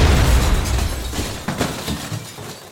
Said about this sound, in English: But you don't have long to think about it, because an explosion rocks the square!